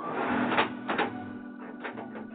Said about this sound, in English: The bolts outside the dungeon door are pulled back.